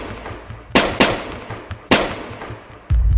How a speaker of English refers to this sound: Like, he told me he was going to give me some Popeyes and drove off, and I'm expecting the Popeyes, and we just heard a bunch of gunshots.